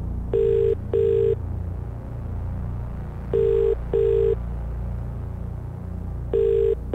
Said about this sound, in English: Oh, my God. I mean, it's a perkier ringtone for some reason. That makes me think he's more of a chance to answer.